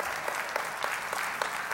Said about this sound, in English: Some of you are clapping because I don't have the extra 5 minutes, but that's okay.